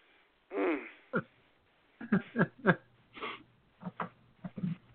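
A wheezy, strained throat sound opens, followed by a string of short, sharp coughs and throat-clearing bursts in uneven clusters, fairly loud, with brief pauses between them.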